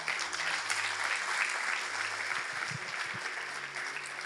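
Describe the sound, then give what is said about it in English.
An audience claps their hands together in a dense, steady burst of applause, many overlapping claps forming a loud, continuous wash of sound with no speech. “With that hand clap, I chira all that unbelief and negativity out of here.”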